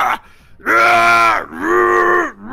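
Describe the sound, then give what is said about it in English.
A human voice imitates the scream of a monster pierced by lightning as it recoils wildly: two loud, drawn-out, strained roars separated by a brief breath, with a short grunt at the start. “you see the lightning pierce it, and it screams.”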